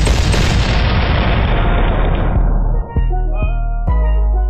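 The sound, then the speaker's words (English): A loud cannon blast, fired for a Tampa Bay Bucs touchdown, roars and rumbles, slowly fading, then three sharp booms follow in quick succession with a ringing, tonal tail. No one speaks. “Touchdown, Tampa Bay. Fire the cannons.”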